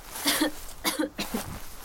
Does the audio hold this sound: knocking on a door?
no